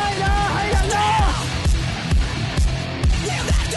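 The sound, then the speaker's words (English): A person lets out a loud, wavering scream over a steady, thumping drum beat, the cry trailing off after about a second while the rhythmic music keeps going. “Get out, scream!”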